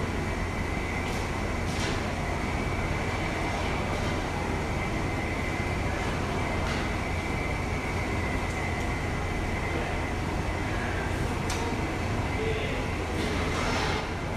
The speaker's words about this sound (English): So we've poured about, what is this, 3 gallons? 3 gallons, we poured about 2. We are boiling some oil.